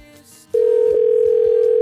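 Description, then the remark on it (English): A phone line rings on an outgoing call back to a woman: after a half-second of faint background noise, a loud, steady telephone tone switches on and holds unbroken to the end, clear, with no talking. “She didn't sound like the type to pick the phone up again.”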